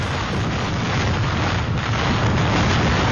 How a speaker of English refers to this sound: This is what 185-mile-an-hour winds sound like.